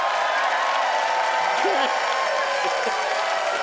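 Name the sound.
audience applause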